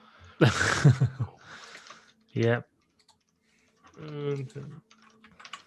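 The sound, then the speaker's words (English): Quick, light clicks of a mechanical keyboard tapping away in bursts, mixed with short vocal sounds and bits of voice; the key clatter stays fairly faint. “Hey, you can hear my clicking on my mechanical keyboard.”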